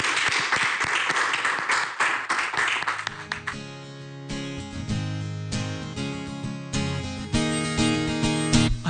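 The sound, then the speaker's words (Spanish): A burst of loud crowd applause fills the first few seconds, dense and continuous, before fading as sustained music with singing takes over for the rest. “Un aplauso fuerte.”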